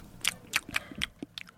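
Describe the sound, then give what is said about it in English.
Wet, crunchy chewing noises made by a person's mouth miming eating roast beef: five or six quick, smacking bites in an uneven rhythm, with no talking. “Eating roast beef. Slow and delicious.”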